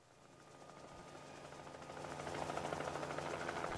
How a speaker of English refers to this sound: Oh, there's a helicopter.